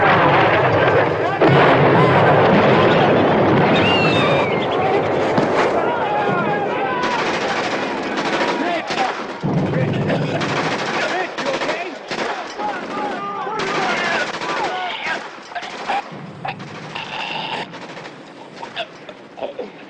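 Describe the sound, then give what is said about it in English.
A loud, nonstop barrage of incoming artillery fire and explosions, rapid bursts and booms overlapping for the whole stretch, with voices shouting through the din. “Incoming!”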